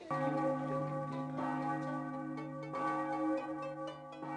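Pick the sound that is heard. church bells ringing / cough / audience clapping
church bells ringing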